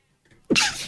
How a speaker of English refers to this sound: Hold on, I think I got to sneeze.